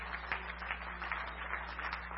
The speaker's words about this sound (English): I wish somebody just get on your feet and give God a big old hand clap because He's worthy to be praised right now. Hallelujah. He's worthy to be praised right now.